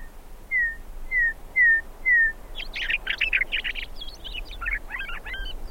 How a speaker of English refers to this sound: You haven't heard a bird till you've heard a meadowlark. And you, once you hear that, you never forget that.